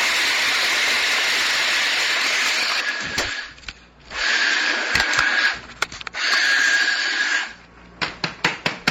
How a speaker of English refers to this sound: Okay, so we're going to grind this up. This is going to be a little loud. Bear with me.